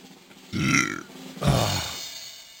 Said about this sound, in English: I got a burp coming. Hold on.